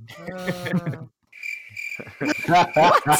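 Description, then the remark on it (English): A steady, high cricket chirping sound effect starts after a brief pause and continues to the end, with voices talking before it begins and over its last part. “That's getting crickets.”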